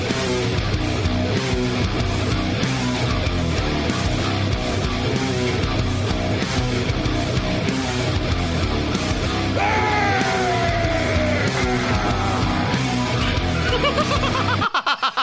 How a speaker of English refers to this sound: That was a vicious scream right there at the end. That is amazing.